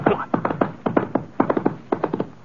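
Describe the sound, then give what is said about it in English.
Horse hooves clopping in a steady rhythm, the hollow knocks falling in quick groups of three or four as a saddled horse carrying its rider moves off at a lively pace. “Well, I sure didn't feel like sticking around for another one of their arguments, so I sort of sneaked out the front door and climbed into the saddle. Let's go, boy. Come on.”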